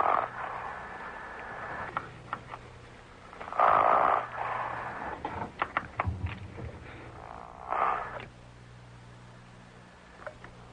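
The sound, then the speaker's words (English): Irregular buzzy, rasping bursts of a person snoring come through a thin, phone-line sound during a phone call, over a steady low hum, with a couple of louder surges and no talking. “Is the coach shaving in the background there? Or snoring?”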